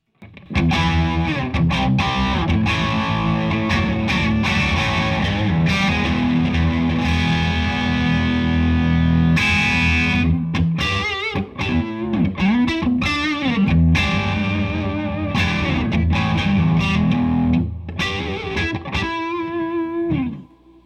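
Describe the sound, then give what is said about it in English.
Distorted electric guitar plays chords and riffs through an overdriven Friedman Dirty Shirley amp, loud, with thick sustained crunch and a few short pauses between phrases. No one speaks. “All right, a little distortion just so you hear what that sounds like with the Friedman Dirty Shirley turned on.”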